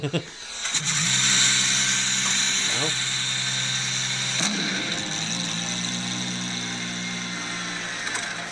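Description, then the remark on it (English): A big V12 engine drones with a smooth, multi-toned hum, blipping its revs upward three times before settling back to a steady idle-like roar, while a voice briefly speaks. “That's just a big singing V12, isn't it?”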